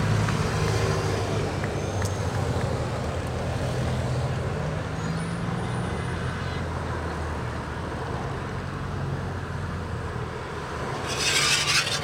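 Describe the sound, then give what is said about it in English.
The DSM team car passes by at the Tour de France with a loud, rough rumble and a grinding, unhealthy wheel noise over steady road roar, ending in a brief harsh hiss. “Oh, that was like a wheel going to fall that off.”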